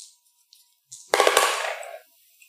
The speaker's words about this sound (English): I have 2 ones. And I'm going to give him defense dice. And he rolled nothing.